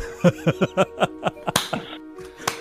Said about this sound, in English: Oh, no. I knocked my headphones off.